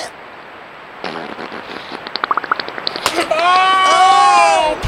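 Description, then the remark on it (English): A beaver's wet fart that starts as a rapid series of sputtering pops growing louder, then turns into a sustained squeaky, bubbling tone for the final couple of seconds. “I don't like that beaver farting.”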